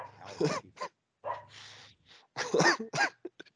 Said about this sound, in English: shut the dog up